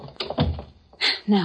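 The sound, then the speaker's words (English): A door swings shut with a solid thud partway through, as people slip inside and the door is closed again, amid brief bursts of people talking and shuffling movement. “Come on, quick, so I can close the door again.”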